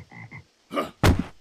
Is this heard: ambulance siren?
no